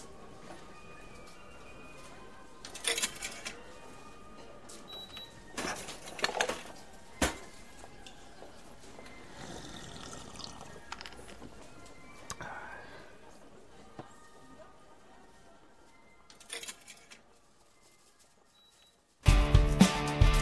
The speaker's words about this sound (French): Oh punaise, je crois qu'il a rien compris le père George Van Bruegel, comment elle marche la machine à distribuer les canettes.